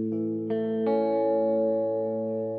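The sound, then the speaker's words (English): A Teisco electric guitar with four pickups rings out in sustained, shimmering chords washed in reverb, with a couple of fresh strums layered over the lingering tone. It is played alone and steady, with no voices. “Ooh, reverb-y.”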